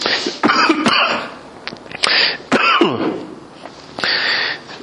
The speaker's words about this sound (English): Don't worry, I don't have the coronavirus. I've had a cough since about November.